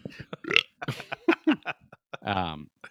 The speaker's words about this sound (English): This is burp sound effects again.